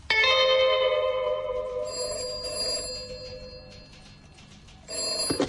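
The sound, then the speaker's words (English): A telephone bell rings loudly at Brighton Police Station, one long metallic ring trailing off before a second ring starts near the end; the call is from a sergeant. No one speaks. “It's the sergeant on the phone.”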